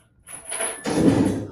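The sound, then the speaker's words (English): A door swings open, starting with a brief scraping slide and then a louder, rumbling push that fills the remaining second before it trails off. “Open the door.”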